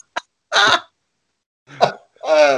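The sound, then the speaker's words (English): Two deliberate throat clearings, each a short rasping catch followed by a longer voiced, humming grunt, with a pause between them; loud and alone with no talk, like someone imitating clearing their throat. “you just hear him clearing his throat and then just rhyming that off.”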